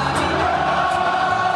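A huge stadium crowd in Munich, Germany, at an NFL game between the Tampa Bay Buccaneers and the Seattle Seahawks, sings an American classic song together for quarterback Tom Brady, a loud, steady wall of massed voices holding a sustained melody with no single voice standing out.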